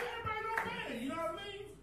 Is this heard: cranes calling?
no